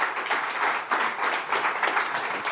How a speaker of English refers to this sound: Please give him a round of applause, guys.